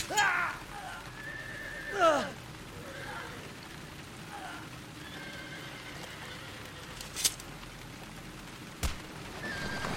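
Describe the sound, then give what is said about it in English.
A panicked horse pulling a cart whinnies shrilly twice near the start as it runs down the road, the second cry louder and falling in pitch, over a steady rain-like hiss with faint hoof clatter and a couple of sharp knocks later. “The panicked horse ran with the cart past Lynk and down the road, the vendor bouncing lifeless in his seat, hands still on the reins.”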